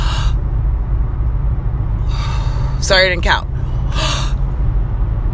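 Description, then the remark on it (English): Deep, airy breaths drawn in and pushed out in a few separate bursts during a guided deep-breathing exercise, with a low hum underneath and a brief spoken remark between them. “You did your deep breath.”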